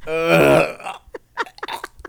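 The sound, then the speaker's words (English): A man's loud, drawn-out throaty hack lasting nearly a second, rough and voiced like a forced cough or retch, followed by a few short, choppy vocal bursts. “hacks and coughs like he's been smited by God.”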